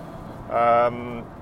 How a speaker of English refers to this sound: Okay, today's episode brought to you from the car. Nice to be out and about.